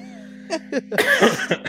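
A man who is losing his voice coughs: two short hacking bursts, then a longer, rougher fit of coughing over a steady low hum.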